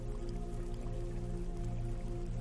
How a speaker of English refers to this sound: Just hear the water.